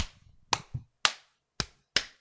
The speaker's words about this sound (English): Just clap, get us back, and into the outro.